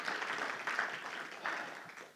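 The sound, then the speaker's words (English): A church audience applauds steadily to thank the worship team, a dense wash of many hands clapping at once, moderately loud and continuous for a couple of seconds. “I forgot to do it during announcements, but as I was singing, I was just thinking of thanking the worship team for leading us, which we don't do very often, but should we just clap or say amen, just thank them for”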